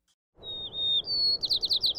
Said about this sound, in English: And Jenny and her colleagues think they know how these city sparrows' song is spreading.